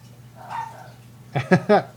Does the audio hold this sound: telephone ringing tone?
no